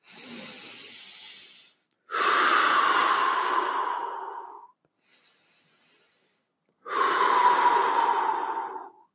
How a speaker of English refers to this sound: And so if you were to close your eyes, you could breathe in through your nose and out through your mouth and just focus on the air coming into your nose and into your body, and focus on the exhale, pushing all the air out of your body.